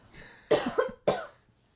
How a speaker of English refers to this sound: Yeah, I need to cough. Hold on.